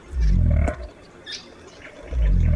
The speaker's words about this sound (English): While pig-like grunting on the forest floor tells us we're in the company of the largest bird on the continent, the southern cassowary.